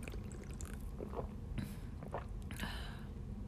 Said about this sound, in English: The flavor of it's really good. Let's take a little sip, shall we?